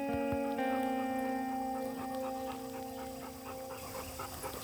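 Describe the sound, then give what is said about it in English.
A search dog pants steadily for several seconds, quick rhythmic breaths over a constant humming background, with no one speaking. “So I just wanted to explain what the dogs are doing and what they're telling us here.”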